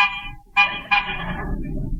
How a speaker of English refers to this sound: Pull up, Rochester. We'll stop here. Honk the horn. Maybe somebody will come out.